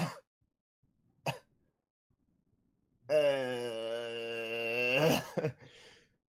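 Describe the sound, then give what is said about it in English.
A person acts out a weak cough for the character Norik, lying on the ground at 1 HP in a tabletop role-playing game: two short, breathy hacks, a drawn-out strained groan, then a couple more feeble coughs, with no other sounds. “And Norik, he just kind of lets out this cough, just...”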